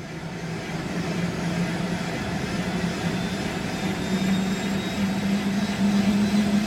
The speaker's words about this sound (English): Yes, so we're in the helicopter now. It's a significantly more spacious aircraft than the tiny little electric airplane I was in a few moments ago.